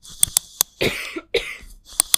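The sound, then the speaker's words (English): Two harsh, raspy coughs, one after another, with a few sharp clicks around them and no talking. “Sorry, I've got a really bad cough right now.”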